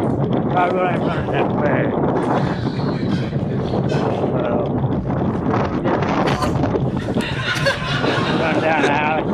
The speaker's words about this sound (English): So you can't hear what he says because he's outside and he's driving a scooter in the middle of the street.